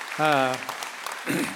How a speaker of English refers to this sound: And you all, I hope you realize how blessed you all are to have just an awesome staff. And you've got a lot of great folks. You can clap for that. That's awesome.